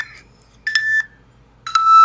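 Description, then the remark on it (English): A little electronic timer beeps loudly: a brief tone at the start, then two sustained high-pitched beeps about a second apart, with near silence between them. “And we got a little timer that goes beep, beep, beep.”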